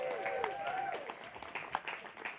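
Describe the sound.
A crowd bursts into steady, dense clapping as two people are invited up, while several voices cheer with high, sliding "woo" calls that trail off early, leaving the applause to carry on alone.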